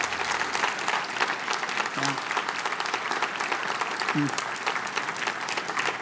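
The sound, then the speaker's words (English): A church audience applauds steadily and loudly for several seconds, a dense wash of clapping with a couple of brief voiced calls rising out of it. “So my hope is that probably, like, yeah, you can clap.”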